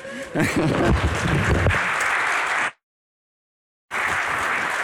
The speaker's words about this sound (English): Well, I'll take your applause, although I know you're being kind. I'll take it.